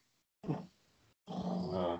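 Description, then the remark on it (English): A male pet dog growls in two low, rumbling bursts: a short snarl that trails off, then after a brief pause a longer, steadier growl that stays fairly loud until it ends. “He started growling as soon as you mentioned Willem Dafoe.”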